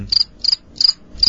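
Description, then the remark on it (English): Crickets chirp in four evenly spaced bursts of high, trilling pulses, clear against a quiet background, with no voices present. “Crickets.”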